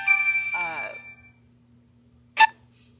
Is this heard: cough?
no